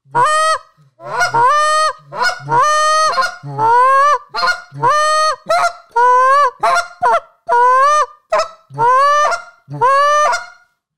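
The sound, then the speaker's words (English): A goose call blown in a rapid series of honks, moans and short clucks, loud, about a dozen calls in uneven rhythm with brief gaps, imitating geese, with no talking. “So you moan into the mic and I'll moan away from the mic.”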